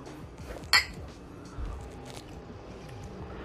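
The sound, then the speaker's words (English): A single bright clink of glasses of Pilsner beer touching in a toast, with a short ringing tone that fades quickly over a low, steady background rumble. “Wait, we're not. Okay. Cheers.”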